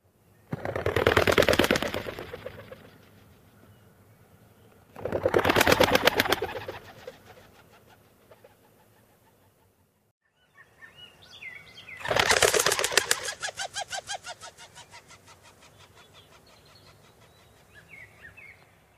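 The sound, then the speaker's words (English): Rock pigeons burst into flight three times, each takeoff a loud, rapid clatter of flapping wings lasting a couple of seconds before fading, with faint outdoor chirps in the quieter stretches. “And here's what they sound like when they take off.”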